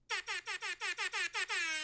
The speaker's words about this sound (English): It's called a rap air horn.